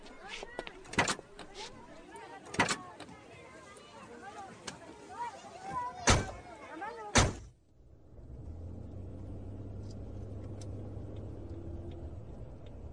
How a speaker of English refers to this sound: I see Q sent the car over. Allow me to drive.